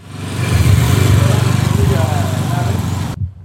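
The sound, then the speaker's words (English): A motorbike engine rumbles steadily and loudly on an almost empty street in Juba, South Sudan, during the COVID-19 outbreak, a low throbbing drone with faint street noise around it, before the sound cuts off abruptly near the end. “You're barely hearing the voice of motorbikes and few vehicles moving around because of the COVID-19 outbreak in the country.”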